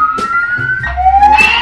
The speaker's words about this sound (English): In the broadcast, in the building we're broadcasting from, they're having a fire drill.